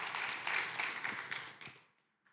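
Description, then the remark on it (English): A burst of applause from a small crowd for a man called up from the audience, dense clapping that stays fairly loud for about a second and a half, then thins out and fades to near silence. “Give him a round of applause, guys.”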